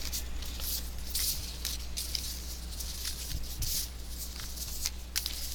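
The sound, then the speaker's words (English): A deck of cards is mixed by hand rather than shuffled, as the cards are hard to shuffle, producing irregular swishes and papery slides in quick bursts over a steady low hum, with no one talking. “I'm just going to mix them because they're kind of hard to shuffle.”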